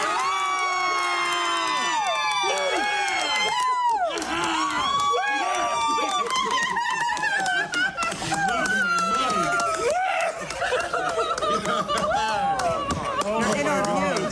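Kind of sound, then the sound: crowd, people cheering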